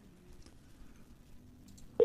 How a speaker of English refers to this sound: Yeah, something happened. Yeah, the phone cut off.